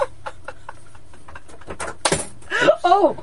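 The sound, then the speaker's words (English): A light clatter and brief scrape as a hat is knocked off a wall by laughter, preceded by faint tapping and followed by a burst of loud laughter. “My laughter knocked off my hat from the wall.”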